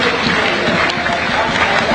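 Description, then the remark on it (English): Steady, dense applause from a large football stadium crowd, a continuous loud wash of clapping with scattered cheers mixed in, holding level for the whole stretch, a late round of applause for Elliot Lee as Wrexham substitute him in a match against Barrow. “As Wrexham make a final change, and Elliot Lee is going to get his customary late round of applause.”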